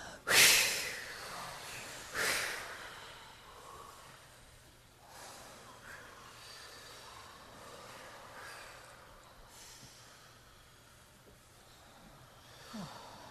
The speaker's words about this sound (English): So first, let's just make some strong exhalations.